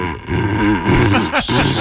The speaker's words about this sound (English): I'm sorry, that's the Weimaraner. The Weimaraner blowing through a paper towel. Cardboard sorry, tube. It makes me laugh every time I go.